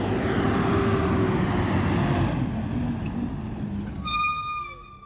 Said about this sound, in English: Obviously, the garbage trucks come the next morning and collect the cans.